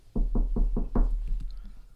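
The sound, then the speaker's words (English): Five firm knocks on an apartment door by Miami-Dade Police before a consent search, in a quick, even rhythm, then a couple of fainter taps trailing off, fairly loud with no talking. “Knock on the door.”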